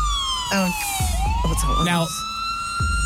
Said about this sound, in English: No, we'll loop this siren a bit longer. And here we go. No, we'll loop it a bit longer.